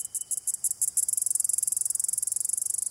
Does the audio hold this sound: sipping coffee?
no